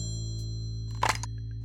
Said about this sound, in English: The telephone rattles and rings, a mechanical chirp.